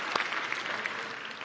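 An audience breaks into steady applause, a dense patter of many hands clapping at an even, moderate loudness for the whole stretch with no voices standing out.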